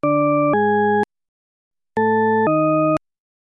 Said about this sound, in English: When one tone of a pair is played, followed by the second tone, some people hear an ascending pattern. But other people, on listening to the identical pair of tones, hear a descending pattern instead.